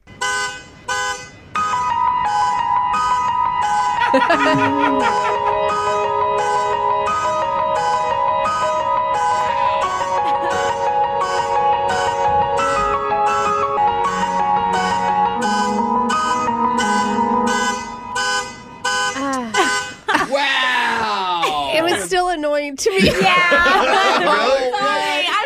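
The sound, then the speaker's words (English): A car alarm going off outside an apartment cycles loudly through its rapid repeating tones while a professional keyboard player plays sustained chords and melody along with it, turning it into a song, the two blending musically until the alarm's warbling pattern takes over near the end. “Let's listen to the sound of a professional keyboard player who had a car alarm going off outside his apartment, and he turned it into a beautiful song.”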